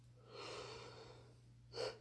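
A long, breathy, drawn-out yawn, ending in a short, sharper exhale near the end. No talking, just a faint steady hum underneath.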